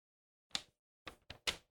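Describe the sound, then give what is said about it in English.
Paper rustles in four short, crisp bursts, one alone and then three in quick succession, soft and crackly with no voices, separated by near silence. “That's silence, but you can hear the paper.”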